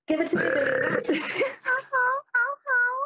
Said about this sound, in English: Give it to me in burp form, I'll take it.